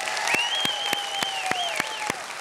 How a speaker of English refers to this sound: So here's what I want to ask you to do. If you're happy to be here today, I want you to clap your hands.